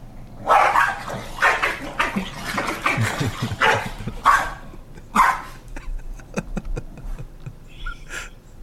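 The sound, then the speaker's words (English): Two dogs bark back and forth at each other in quick, overlapping bursts, fairly loud, then trail off into smaller yips and snuffling sounds. “just absolutely barking at each other.”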